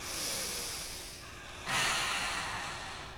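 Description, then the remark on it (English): Two long, deliberate breaths: a slow airy inhale that fades, then a louder, rushing exhale with a breathy, slightly snorting hiss. No talking. “Breathing.”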